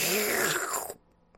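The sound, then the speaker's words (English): A person imitates a slurping noise with their mouth: a wet, sucking slurp for about a second, fairly loud, with a slight falling pitch before it cuts off into near silence. “They make all the slurping noise from sucking so much.”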